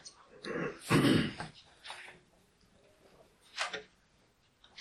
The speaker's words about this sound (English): I'm gonna take a quick sip of water here.